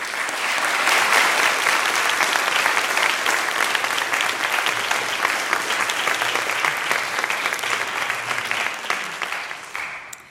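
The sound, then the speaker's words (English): Sustained applause from an audience at a student awards presentation, for a student given an honorable mention, fills the whole stretch, a dense, steady wash of many hands clapping that holds at an even loudness before tapering slightly at the end. “And so I would like you also to clap for”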